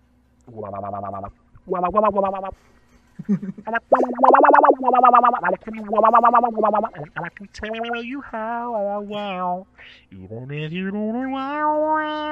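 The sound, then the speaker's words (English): A series of buzzy, pitched bursts run through the wah effect, setting 10, of a drum machine that also works as an effects box, their tone sweeping up and down in a meowing, vocal-like way, loud with short gaps between phrases. “Wah is 10.”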